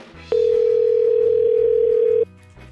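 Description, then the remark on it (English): A telephone ringing tone, heard while calling what was thought to be a business number, sounds as one steady, mid-pitched electronic beep lasting about two seconds, loud and unbroken, over a low rumbling background that continues before and after. “Why won't it ring? Is this the business number?”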